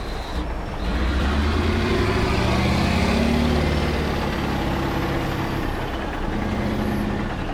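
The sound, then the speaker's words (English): Heavy diesel engines of giant haul trucks, three stories high, and machinery at Bulga Coal Mine, an open pit coal mine in the Hunter Valley, Australia, rumble steadily, deep and loud, with a broad roar that swells slightly; no voices present. “Here, giant machines rip at the black ground, while trucks three stories high cart away tons of coal.”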